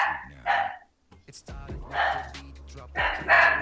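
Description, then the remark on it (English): A dog barks several times in loud, separate bursts with short pauses between them, with a harsh, strained edge to each bark. “And the dog is all for it. Whoever's dog is that is all for this shit.”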